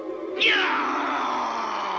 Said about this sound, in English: Remember, that lion may be just as frightened as you are.